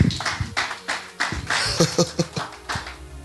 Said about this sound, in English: You need to clap your hands, church.